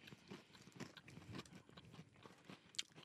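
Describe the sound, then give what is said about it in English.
Crisp crunching as someone bites into and chews a brittle milk chocolate bar with waffle cone pieces and dulce de leche flavored creme, with repeated snapping bursts and a sharper crack near the end, no talking. “And you can see the bottom almost has a crunch bar texture. A little crunch.”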